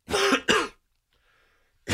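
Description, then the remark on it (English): A loud throat clearing in two quick harsh bursts, then near silence with a faint hiss, and another rough burst starting right at the end. No talking. “I know there's a cough button, but if you hit the cough button, it's just silence.”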